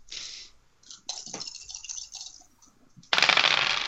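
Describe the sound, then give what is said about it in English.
Dice clatter and rattle across a hard tabletop in a few uneven tumbles, ending with a louder burst of rolling, as dice are rolled for damage in a tabletop game. No one speaks. “So can you roll damage? Yeah, Jesus. These dice, they're not letting me off there.”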